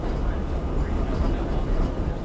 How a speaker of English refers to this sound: However, the next two train ambiences will be implemented within our beat. A spaz train. A more chilled out train.